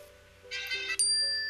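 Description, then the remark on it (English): A bright, bell-like chime rings out, a quick rising ding followed by a sustained shimmering tone, clear with no voices over it. It marks a correct answer in a Legend of Zelda trivia quiz. “Like that sound? I was going to say I might have to change the ringtone.”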